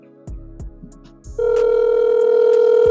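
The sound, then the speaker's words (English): A few soft handling clicks and thumps, then a steady, loud telephone ringback tone starts and holds unbroken to the end, as a call to a friend rings with no one picking up. No one speaks. “She ain't going to answer the phone either.”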